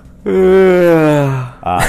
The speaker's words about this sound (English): You said sleep. And stress management. I said sleep, and he yawns.